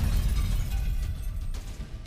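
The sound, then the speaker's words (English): A deep, roaring explosion rumble fills the whole stretch, heavy in the low end with a crackling hiss on top and a brief sharper burst near the end, an explosion lighting up the night sky. No one speaks. “The camp killers give the chaos their backs, walking away just as an explosion lights the skies.”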